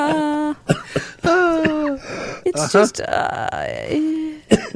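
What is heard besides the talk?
coughing fit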